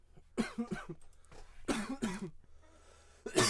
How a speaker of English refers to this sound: Fuck, I'm coughing.